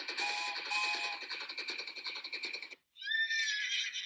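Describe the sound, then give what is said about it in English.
A horse whinnies loudly in a long, shaky neigh lasting nearly three seconds as its rider runs it towards an approaching train. After a brief pause, a second, higher, rising neigh follows. There is no talking. “He is on his horse and runs towards the approaching train.”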